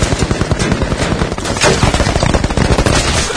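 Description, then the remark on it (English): Sustained machine gun fire, a rapid, loud stream of sharp cracks repeating steadily for several seconds with no pauses and no voices over it. “Can you imagine seeing one of these cars just there and this shit happens? All those fucking shells, dude.”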